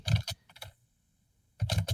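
Rapid clatter of a woman's fingers typing hard and furiously on a computer keyboard, coming in two dense bursts separated by a brief pause of near silence.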